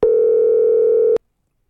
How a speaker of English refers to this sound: I need to start the show with a quick phone call.